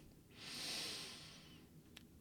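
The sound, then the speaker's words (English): A single slow, deep breath drawn in and let out, soft and airy, followed by a brief faint click near the end. No one speaks. “Instead of stewing in your angry indifference, making excuses, or whipping yourself on the back to try and, you know, in some way make it all okay, let's come to the present through breathing.”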